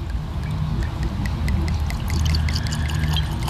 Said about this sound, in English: See? I would have thought that was a heavy pour.